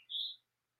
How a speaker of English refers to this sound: Oh, listen to that bird out my window.